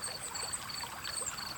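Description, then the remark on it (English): Water gurgles and trickles steadily down a small stream from the top of a cool, leafy gully to the bottom, a continuous bubbling wash with faint high chirps or insect tones repeating in the background. No one speaks. “Can you hear the water gurgling its way from the top of the gully to the bottom?”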